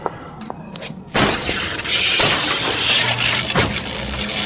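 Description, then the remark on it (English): A sudden loud crash as an axe smashes into computers, followed by sustained shattering glass and clattering debris for several seconds, intense, with no voices. “I smashed the computers with the axe.”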